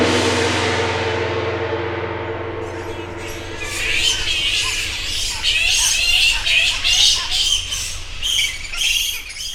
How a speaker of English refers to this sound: The sounds of that gong and those bats tell me it's time for the credits.